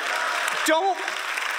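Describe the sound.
A steady wash of audience clapping during a sermon fills the whole clip, dense and even, with a brief voice rising over it near the middle.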